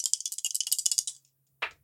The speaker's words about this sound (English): Oh, well, Lady Luck be with me now. This 4's got to turn into a 1 or a 2 or we're out. … reaches back, shakes the dice, prays to all the gods he knows names of.